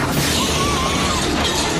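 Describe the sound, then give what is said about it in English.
A car smashes into the Sir Save-A-Lot storefront: a loud, dense burst of shattering glass and crashing debris that rumbles on without letup for a couple of seconds, chaotic, with no voices. “They drive into the store. And they cause this chain reaction that ends in Van Pelt being crushed by a shelf full of paint cans.”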